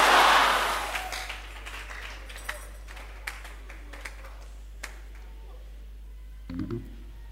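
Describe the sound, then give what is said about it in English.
A crowd claps hands to send away sickness, in a loud, dense burst that quickly fades, leaving a few scattered, sharp claps and taps afterward, with a brief low rumble near the end. “And the sickness which is threatening your life, clap your hands and send it somewhere.”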